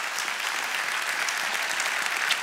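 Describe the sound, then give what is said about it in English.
Steady audience applause for the volunteers, a dense wash of many hands clapping at an even, sustained level throughout, with no voices standing out. “We're going to give a big hand, a big round of applause to all of our volunteers.”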